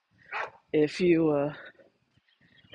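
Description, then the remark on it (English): Dogs bark in a few short, loud bursts, one drawn out into a whining yowl, followed by a brief quiet gap before another sound begins. “The dogs are not happy with me.”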